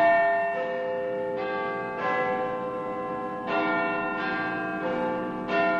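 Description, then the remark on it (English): Big Ben, the large clock tower bell in London, chimes a slow melodic sequence, each strike ringing out with rich, lingering overtones that overlap and decay, heard clearly with no voices. “The chimes of Big Ben are an iconic sound of London, a sound embedded in the history of the British capital.”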